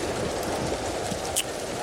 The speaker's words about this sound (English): Mike, hit me with some rain.